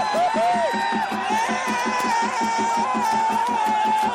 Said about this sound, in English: Gets it down himself. And listen. The crowd goes wild.